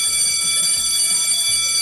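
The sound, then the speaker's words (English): A school bell rings continuously, a loud, steady, shrill electric clang with harsh high overtones that holds for the whole stretch without pause and with no talking over it. “There's the bell. Let's get to class.”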